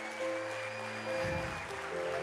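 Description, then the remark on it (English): An audience applauds steadily to welcome correctional services officers and members on a National Day of Correctional Services, a dense wash of clapping with sustained organ-like chords holding underneath throughout. No one speaks. “You're going to keep clapping because I'm going to list some of the very important officers and members here this morning.”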